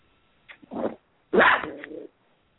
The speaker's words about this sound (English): My dog's barking. The cats get crazy outside and make my dog bark. Okay. A very tiny hellhound. Very, very small hellhound.